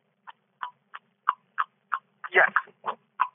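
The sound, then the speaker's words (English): A voice imitates horse hooves with a steady series of sharp tongue clicks, the way the very first horse-hoof sound effects were made, about three per second, bright and clipped, in a clopping trot rhythm with a brief rougher burst midway. “I heard the very first time that they did the sounds of horses' hooves, they sounded like this.”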